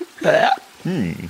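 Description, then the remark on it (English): A person vocally imitates a gulp, a half-burp sound, twice in a row: a short throaty croak, then a lower, rounder gulp after a brief pause. Clear, with no other talking. “A gulp. It's a gulp.”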